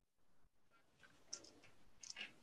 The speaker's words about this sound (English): I will roll some dice too, just to make you think you're something to observe.